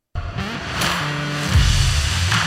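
A loud car engine revs, its harmonic growl rising and holding steady for a couple of seconds, with a brief squeal-like whine near the end and no voices.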